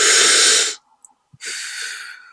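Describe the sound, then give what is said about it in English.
A long, deep breath drawn in, a brief pause, then a steady breath let out, both airy, with no talking. “I'm like, to me, you're just taking a deep breath.”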